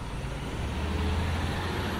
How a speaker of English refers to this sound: Listen to everything. The traffic on the side of the street to our right.